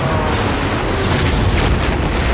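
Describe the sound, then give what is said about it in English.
A loud rocket explosion as a rocket hits beneath the left wing of a fighter craft and tears it apart, erupting into a sustained, roaring blast with heavy low rumble and crackling debris noise, filling the whole moment without any voices. “The rocket hit square beneath the left wing and tore the fighter to pieces. A bright orange explosion.”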